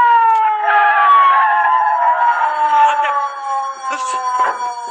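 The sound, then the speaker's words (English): A police car siren wails loudly and steadily, its pitch sliding slowly downward as it sounds on, with a slight rise and fall in volume near the end and no voices. “McGee, I hear a siren. Oh, so do I. It's the police, McGee.”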